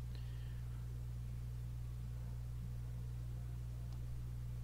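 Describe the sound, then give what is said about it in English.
A steady, quiet static hiss fills the background over a constant low electrical hum, with a couple of faint brief ticks and no voices. “So the static does kind of get a little more intense.”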